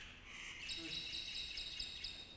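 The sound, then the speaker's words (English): Birds chirp outdoors in a soft, continuous chorus of high tweets and trills, fairly faint, with no one talking. “Nature is amening. At least somebody's amening, right? The birds of the air shall tell of the matter.”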